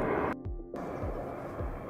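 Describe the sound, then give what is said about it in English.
A helicopter flies overhead, droning steadily, its low rotor thumps pulsing in a slow rhythm beneath a broad rushing roar. It sounds continuous, with no voices. “All right, now enjoy the helicopter for a second, and we're going to go to the next affirmation.”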